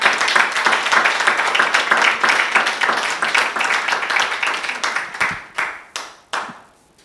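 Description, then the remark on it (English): A church audience claps together for the Lord during a sermon, in a dense, steady burst of applause that thins out toward the end into a handful of separate, sharp claps. “Someone give the Lord a clap of me.”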